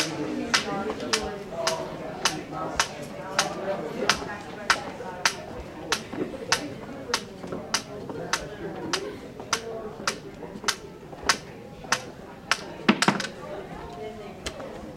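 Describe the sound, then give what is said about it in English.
Sharp, steady cane taps mixed with footsteps repeat about twice a second as a man walks with his cane from a reception desk down a hallway with sound-muffling panels to quiet study nooks, over a murmur of background voices that deadens, with a brief cluster of louder knocks near the end. “Listen to the ambient sound deaden as he walks with his cane from the reception desk to the study rooms.”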